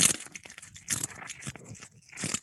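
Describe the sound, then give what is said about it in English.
A cat chews a sardine or fish its owner is feeding it: wet, crunchy bites and tearing sounds come in irregular bursts, fairly loud and crackly, with no one talking. “Stavros is now feeding a fish or a sardine or something to his cat.”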